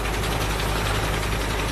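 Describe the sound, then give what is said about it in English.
A steady, low mechanical drone of a tractor engine pulling a harvesting machine back and forth among rows of lavender plants, slicing off the flowers; a constant rumble with faint rhythmic pulsing and no voices. “drives his tractor with a harvesting machine attached to it, back and forth amongst the rows of lavender plants.”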